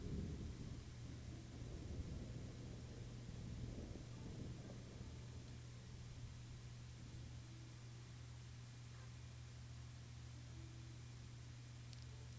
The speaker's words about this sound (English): The massive clouds jostle now, with lightning deep inside. And thunder reverberates in the distance.